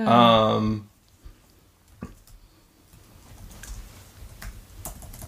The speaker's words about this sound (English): I thought you were just typing it and you're like, okay, next.